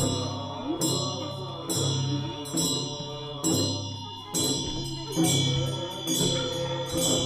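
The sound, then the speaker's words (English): Low, droning voices chant together in a steady rhythm from a lodge alongside a trail, accompanied by bright metallic strikes roughly once a second that ring out over the sustained chant. “I remember hearing chanting voices coming out of a lodge alongside the trail.”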